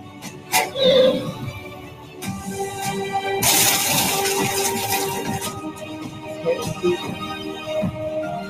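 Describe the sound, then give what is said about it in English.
A sharp crash of breaking glass bursts out midway, a loud bright shattering that lingers for a couple of seconds over a busy background of clatter and ringing tones, with no one talking. “Breaking glass.”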